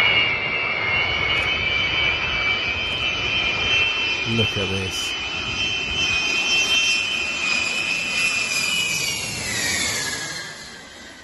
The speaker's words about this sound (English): How cool is that? How cool is that? Oh, I just love the sound of those 8 engines. That's a beautiful sight. Absolutely. Love that B-52.